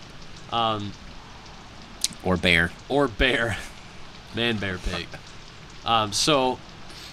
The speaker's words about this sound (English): The soothing water on the window. The soothing water on the window.